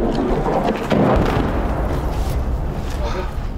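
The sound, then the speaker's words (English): Incoming Russian artillery rounds explode on the outskirts of Bakhmut, producing loud, rumbling booms with a sharp burst near the start amid continuous heavy, roaring noise that barely lets up. “The incoming rounds from Russian artillery fire are really intensive here as we have entered the outskirts of Bakhmut,”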